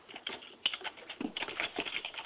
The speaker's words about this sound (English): I'm typing it right now. And I'm putting it in the chat room.